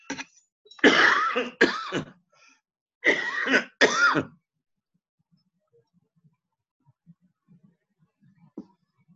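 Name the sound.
coughing and throat clearing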